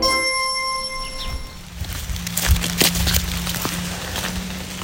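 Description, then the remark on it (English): Steady rain, which has grown a little more intense, patters on forest leaves, a soft continuous hiss broken by irregular, sharper drips. A ringing, bell-like tone fades out at the start, and a low hum runs underneath. “And it is actually raining now. You can hear that it got a little bit more intense.”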